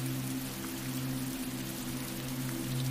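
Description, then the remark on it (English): Steady, hissing storm rain falls without pause, with the faint scattered analog crackle of an old record player and a low, even hum beneath it. No voices are heard. “The soft analog crackle is the perfect accompanist for the sounds of the storm.”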